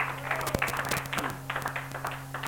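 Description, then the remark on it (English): An audience claps their hands together as a hand clap of praise to the Lord, a dense, irregular patter of many overlapping claps that continues steadily throughout, with a low electrical hum running underneath. “In Jesus' name, give the Lord a hand clap of praise, please.”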